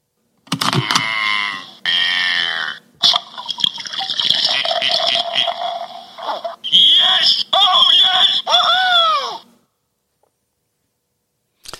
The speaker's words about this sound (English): Scormont Abbey, under the supervision of monks. They brewed the first batch of this beer back in 1862. So let me pour you a glass so you can tell us what you think.